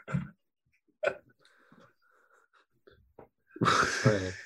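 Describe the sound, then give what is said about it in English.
A person yawns, with a couple of short breathy gasps first and then a long, loud, drawn-out exhale that turns into a groaning vocal sigh. “You yawn.”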